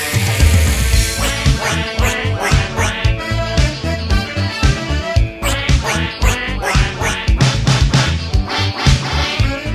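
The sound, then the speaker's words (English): A duck quacks loudly and continuously, a rapid string of nasal quacks in an uneven rhythm that lasts the whole stretch, prominent, with no talking. “Wasn't that just quacking?”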